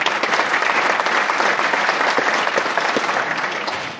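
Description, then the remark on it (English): A crowd claps steadily for about four seconds for the Cache County delegation, a dense, even wash of many hands at a loud, sustained level that tapers slightly at the end, with no voices over it. “So give them a quick round of applause.”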